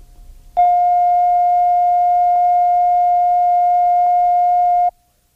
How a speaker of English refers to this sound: The following tone is a reference tone of 700 cycles per second recorded at operating level. Set the playback level control so that the tone reads zero on the VU meter. All following tones will be at this level.